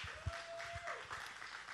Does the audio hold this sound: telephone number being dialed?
no